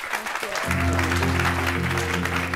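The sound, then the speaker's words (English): An audience at a Stanford eCorner Entrepreneurial Thought Leader Series talk claps steadily for the speaker in a dense, continuous wash of applause, and after about half a second a sustained musical tone swells in underneath and carries on with it. “Everybody give him a huge round of applause.”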